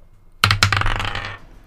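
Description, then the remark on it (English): Dice hit a hard table twice in quick succession, then rattle and tumble briefly before settling. The clatter is fairly loud, with no voices. “This is probably my fairest dice.”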